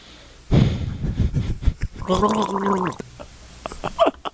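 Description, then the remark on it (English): Someone gargles water loudly as a Chewbacca impression, turning it into a bubbling, growling roar, with a sustained warbling howl in the middle and rough gurgling bursts before and after. “Did you just gargle water? That was your Chewbacca impression?”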